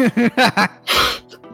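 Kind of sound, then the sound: vocal imitation, voice imitating loud snoring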